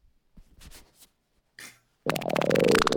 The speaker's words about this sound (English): He's the kind of guy that slips farts into birdchirp.mp3.